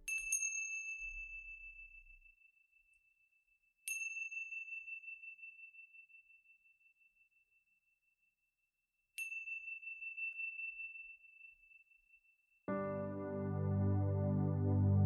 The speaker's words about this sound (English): Now wiggling your fingers, wiggling your toes, when you hear the sounds of the chimes, coming back into this place.